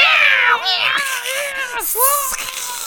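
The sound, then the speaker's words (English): A voice imitates an angry cat attacking a robber, yowling and wailing with sharp hissing, spitting bursts in between, loud for a few seconds without any ordinary speech. “She leapt up at him, hissing and spitting and scratching his face.”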